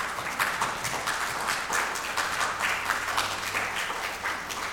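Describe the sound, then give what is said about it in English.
An audience breaks into steady, sustained applause, a dense wash of many hands clapping at an even loudness for several seconds, with no voices standing out. “Can we give a round of applause for those?”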